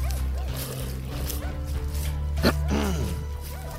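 A female dog gives several short, yipping barks and whines at irregular intervals over a steady low hum with a brief sharp knock partway through.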